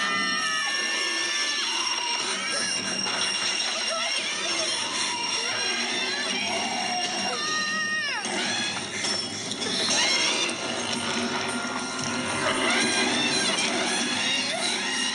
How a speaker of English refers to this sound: Yes, what kind of bugs me is the sound of the monster. It's like an elephant. It sounds like a tuba dying.